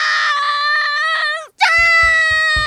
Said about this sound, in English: what's all this screaming about?